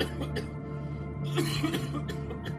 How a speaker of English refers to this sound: And … kind of coughing. We should probably be on the lookout for more of that.